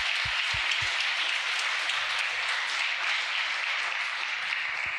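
An audience gives a round of applause for a group of people asked to stand up, a dense, even wash of many hands clapping at a constant loudness for the whole stretch, with no voices rising above it.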